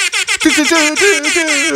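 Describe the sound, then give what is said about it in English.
A voice loudly imitates a rap air horn: a couple of quick blasts, then a long, brassy, wavering blare, bright. “The rap air horn is one of my favorites.”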